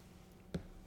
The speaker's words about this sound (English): But yeah, so I'm just kind of going off the cuff today and taking a lot of sips of water, as you can tell, because I'm about to do that again.